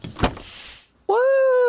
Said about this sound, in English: Now the door to the jet is open. Well, I guess I'll have to close that too.